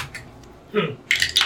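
Five six-sided dice clatter and tumble across a tabletop in a few quick, rattling bursts, moderately loud, rolled for damage in a tabletop role-playing game, with a brief pause between the rolls and no one speaking.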